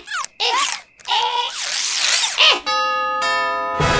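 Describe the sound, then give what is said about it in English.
A house doorbell rings loudly with a steady, buzzy electronic tone, sounding twice back to back near the end, after a stretch of warbling, squeaky sliding sounds. “could you ring the doorbell?”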